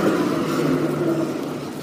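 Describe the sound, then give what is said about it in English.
A tram rolls past on a track through the middle of a park as someone crosses the track, a steady low rumble with a whirring mechanical hum and a faint tonal whine, fairly loud throughout with no one speaking. “You're going to hear some trams in the background as I cross the tram track in the middle of the park.”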